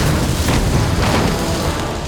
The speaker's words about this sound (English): Tiasi was not so fortunate. His massive form crashed headlong into the wall of fire.